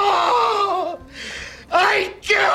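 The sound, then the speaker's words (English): A voice imitates a tomato plant screaming in agony from being cut and trimmed: a wavering, strained moan, then two sharp, loud shrieks in quick succession, with no other sounds. “That tomato plant you keep cutting and trimming, it's screaming at you in pure agony, and you don't even know it.”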